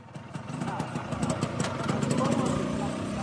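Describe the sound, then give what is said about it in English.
A moped engine runs steadily, a continuous buzzing putter that holds even for a few seconds, with indistinct voices faintly mixed underneath. “goes about on her brother's moped when she has time.”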